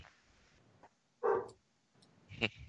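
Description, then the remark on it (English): A dog barks twice, a fuller bark followed about a second later by a sharper, shorter one, against a quiet background with no talking. “Uh-oh. Dog's barking.”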